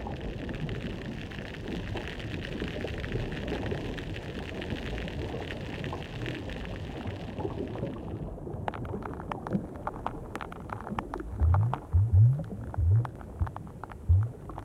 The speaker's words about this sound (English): Dip a hydrophone into most aquatic habitats today, and you'll hear the voices of fish and crustaceans whose taxonomic groups first evolved sound-making devices, or became common during this time.